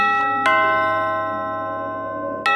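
doorbell ringing

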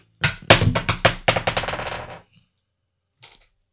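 dice being rolled

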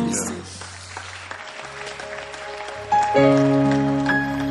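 weak applause

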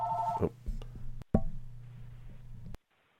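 telephone ringing

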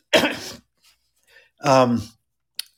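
throat clearing

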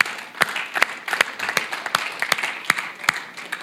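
audience applause

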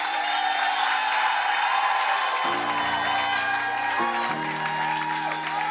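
audience applauding

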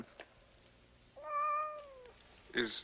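cats meowing

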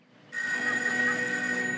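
telephone ringing

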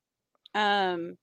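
sneeze

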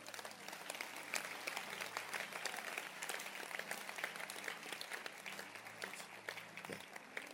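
audience hand clapping

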